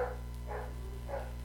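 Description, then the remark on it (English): Dogs bark three times at a steady, even pace, sounding somewhat muffled over a constant low electrical hum. No one speaks. “Oh, shut up, dogs.”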